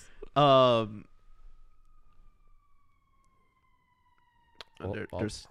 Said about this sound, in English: There's a siren. Great.